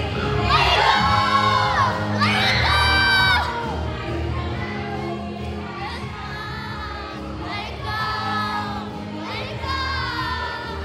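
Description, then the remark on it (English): A crowd of children at a summer camp party cheers and shouts together, high voices whooping in loud bursts that swell near the start and again toward the end, with a constant lower hubbub of many voices underneath. “All right, Camp Mariposa, make some noise!”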